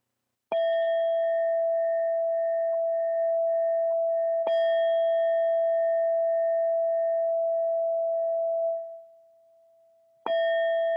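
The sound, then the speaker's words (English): A meditation chime is struck three times to end a short meditation, each strike ringing out in a clear, sustained tone that lingers and slowly fades before the next. It is fairly loud, with no talking. “And so in a moment, I'll be going to ring a chime here, and then we're going to end this short meditation and reflection.”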